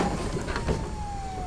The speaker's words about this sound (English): The sirens, they're getting close.